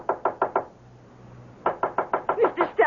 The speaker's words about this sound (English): I can't open the door. It's locked. Oh, knock on it. Knock.